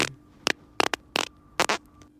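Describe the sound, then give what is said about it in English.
A fart sound in four short, raspy bursts, buzzy and fairly loud, with brief gaps between them over a low steady hum. No one speaks. “So that was hole number one, fart.”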